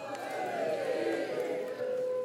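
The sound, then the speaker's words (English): A large audience cheers and shouts together in a steady, loud roar that holds for a couple of seconds, many voices blending into one sustained wave of sound. “Let's lift our water up and cheer the king. Long live the king!”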